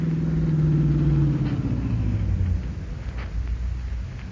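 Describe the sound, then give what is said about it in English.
A car engine rumbles loudly, its low droning pitch sliding down as the bandit car slows and arrives in a staged scene, then settling into a steady idle with no voices. “Here comes the bandit car.”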